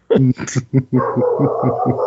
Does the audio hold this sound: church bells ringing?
no